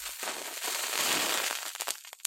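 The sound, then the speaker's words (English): A match is struck and flares up with a bright, hissing rush, followed by a few sharp crackles and pops as the flame catches and quickly dies down. “That is a match being lit and the fire.”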